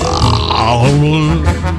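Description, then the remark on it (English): A burp let out under a Christmas giving tree: a single long, loud, low, throaty, voiced belch that wavers in pitch and drags on for nearly two seconds without any talking over it. “He went under the tree and burped.”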